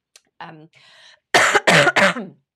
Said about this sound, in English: Also got a bit of a cough, sorry.